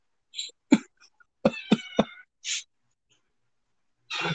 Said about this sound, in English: Oh, shut up, cat. She just wants to be part of the show, I guess.